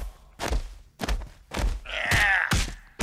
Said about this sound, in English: The Avenger's skilled fists continued to pound the massive muscled murderer into submission.